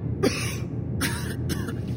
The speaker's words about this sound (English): The dust made me cough, so I covered my mouth with my shirt.